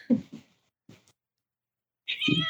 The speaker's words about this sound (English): See, is that was your that cat? The cat? Yeah, she was meowing. She was what? Holy! What's the matter?